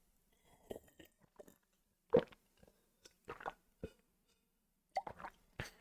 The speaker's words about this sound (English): Okay, is 8 ounces of water enough? 8 ounces of water is enough. Drinking sounds.